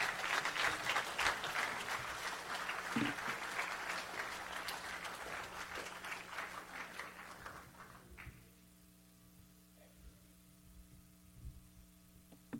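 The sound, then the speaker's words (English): An audience at a church service claps in a dense, steady round of applause for about eight seconds as a guest preacher comes up, then it fades out, leaving a low electrical hum and a few scattered claps. “If you could give him a round of applause as he comes.”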